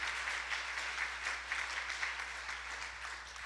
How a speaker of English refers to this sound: Can you clap your hands to the Lord right now?